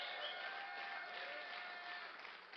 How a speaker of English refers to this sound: Can you clap your hands?